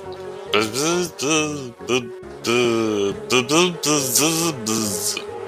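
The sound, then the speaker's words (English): A voice imitates a bee, making a loud, wavering buzz in several bursts that rise and fall in pitch, with brief gaps between them. “The bee is right to be confused.”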